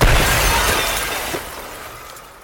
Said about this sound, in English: After the third smash, the window shattered.